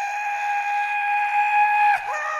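A steam train whistle blows one long, steady, loud blast for about two seconds, then cuts off with a brief clunk as the tone sags downward.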